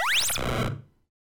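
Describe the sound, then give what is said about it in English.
A coin pickup sound effect made from three synthetic tones combined, sweeping quickly upward together, bright and fairly loud, lasting well under a second before fading out with no talking. “It takes three tones together to make this one sound effect.”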